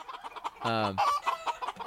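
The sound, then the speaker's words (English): A chicken clucks in a quick run of short, throaty calls, with one longer harmonic squawk in the middle, loud with no talking. “Every single time, okay, just in honor of the chicken, I'm going to play the chicken clip.”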